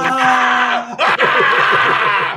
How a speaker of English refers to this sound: Right, just start yelling